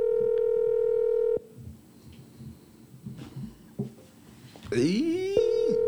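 A steady electronic ringback tone sounds loudly for over a second, then gives way to faint background noise before a warbling, chirpy tone burst returns at the end, like a phone line ringing and connecting.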